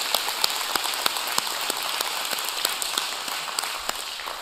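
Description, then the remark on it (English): A church audience applauding, a dense, steady wash of clapping with individual sharp claps popping out irregularly throughout, sustained at an even level with no voices. “Yeah, you can absolutely applaud that. Applaud it.”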